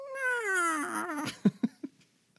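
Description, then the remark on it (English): A voice imitates the cry of a dragon turtle that has just been hit: a long, wavering, high-pitched wail that slides steadily downward, followed by three short, sharp yelps, with no speech around it. “That also does hit the dragon turtle, who you hear.”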